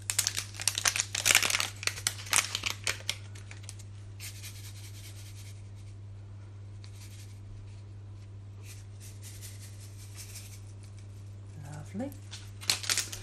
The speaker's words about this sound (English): Next, I'll add the yeast. I'm just going to measure out the yeast.